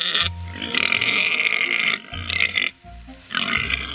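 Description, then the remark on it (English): Very large sows at feeding time let out loud, harsh squeals and barking grunts in rapid overlapping bursts, with a brief pause before another shrill squeal, aggressive sounding. “And at feeding time, the pigs get very aggressive and they bark and squeal.”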